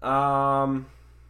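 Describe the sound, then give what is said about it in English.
A single drawn-out meow from a pet cat named Miguel, fairly loud, lasting under a second with a slight bend in pitch, then quiet. “Kitty cat. I have a cat now.”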